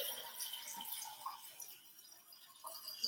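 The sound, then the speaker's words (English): About 8 to 12 ounces of water splashes and trickles steadily into a container to mix a strawberry lemonade energy drink, a soft continuous pouring sound with a bright, hissy texture, without any voices. “8 to 12 ounces of water.”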